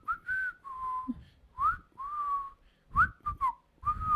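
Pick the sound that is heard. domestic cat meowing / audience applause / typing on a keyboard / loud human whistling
loud human whistling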